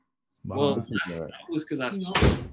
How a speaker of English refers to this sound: Well, that was because I God damn, who's slamming doors?